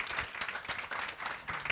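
A crowd applauds an interviewee at a stage event, many hands clapping in a dense, crackling wash with no distinct rhythm, moderately loud throughout the brief moment.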